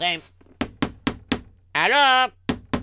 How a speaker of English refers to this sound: I am going to knock on the door here and go get my honey.